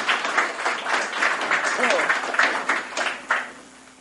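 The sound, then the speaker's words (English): A live audience claps steadily for several seconds in a round of applause for Fair Creek Films: a dense, crackling wash of many hands at moderate loudness, with some voices mixed in before it begins to thin out at the end. “Round of applause for Fair Creek Films. Round of applause.”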